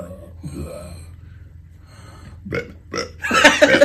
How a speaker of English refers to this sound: I can burp on command though. Yeah. Super fast too.